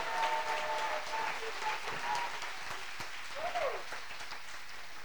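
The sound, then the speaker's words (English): An audience applauds for the Lord in a steady, dense wash of clapping that holds at moderate loudness throughout, with a few faint tonal voices or whoops rising briefly above it. “Acclame le Seigneur. Clap for the Lord.”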